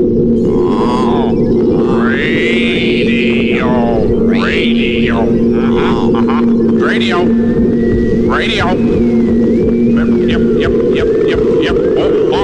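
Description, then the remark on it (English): An enhanced soundscape recorded on Mars and boosted with audio filters: a loud, steady low drone overlaid with bursts of warbling, voice-like tonal sweeps and thin whistles that rise and fall throughout, with no intelligible words. “I won't get into the details too much, but here's the result of me augmenting that audio.”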